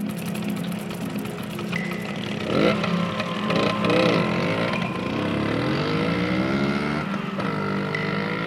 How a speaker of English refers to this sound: It was a warm summer evening in Frankfurt, Germany. 20-year-old David Maust revved his moped engine.